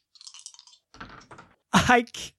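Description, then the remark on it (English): Dice rattle and clatter in a few quick bursts, with a louder tumble near the end, like several people rolling onto a table. Everyone rolls dice at once, and the dice land showing three ones and a two. “All right, everybody roll act under pressure to get out of the building before the door closes.”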